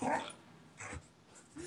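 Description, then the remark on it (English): A dog whimpers in a few short, high whiny bursts separated by brief pauses, fairly quiet with a breathy edge. “Oh, my dog just had such a freak out.”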